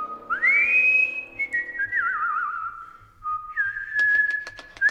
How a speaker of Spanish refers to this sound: Silbé cantando bajo la lluvia instantes antes de que lloviznara.